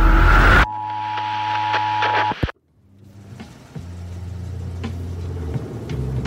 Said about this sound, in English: What the? It's a cop car.